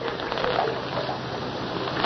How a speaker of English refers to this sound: Washing her face and hands in the water pail.